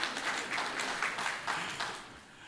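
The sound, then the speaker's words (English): An audience claps steadily for a couple of seconds, a dense crackle of many hands at moderate loudness with small surges in intensity, then tapering slightly toward the end. “They're just like, are we allowed to clap?”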